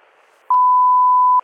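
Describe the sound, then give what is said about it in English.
A loud, steady electronic tone from a telephone left off the hook sounds once, holding an even pitch for about a second before cutting off abruptly, with only faint background hiss before it and no voices. “I was just walking down the hall and the phone was off the hook.”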